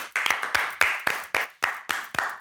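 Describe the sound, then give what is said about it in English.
Hands clap in a steady, fairly quick rhythm, around ten sharp claps over a couple of seconds, with no talking over them. “See, we need to clap.”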